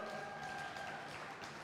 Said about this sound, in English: Can you give my squad a round of applause?